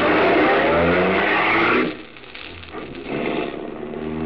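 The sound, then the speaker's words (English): A car engine roars loudly, revving hard for a couple of seconds, then drops off and surges again as the driver steps on the gas and the car accelerates away. No voices are heard. “You're almost jubilant as you run to your car, tell Helene the good news, and step on the gas.”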